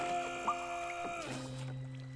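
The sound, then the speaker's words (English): A small boat moves through calm water with a steady, droning hum that drops to a lower pitch partway through, continuous, with no voices. “The little boat shot through the docile waters.”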